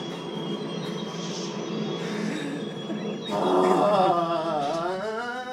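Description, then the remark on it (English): A mine cart carrying a person rolls down along rails with a steady rumble, then grows louder as shrill metallic wheel squeals rise and wobble over the clatter. No one speaks. “Phil is going down a mine car with rocks falling from the sky down from him”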